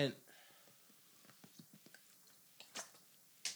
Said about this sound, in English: Had to take a sip on that because you're exactly right, sir.